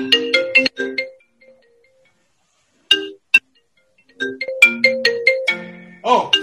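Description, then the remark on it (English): A phone's melodic electronic ringtone plays in quick bursts of bright chiming notes, falls silent briefly, then starts up again louder and busier, with no one talking. “Phone calls come through the internet.”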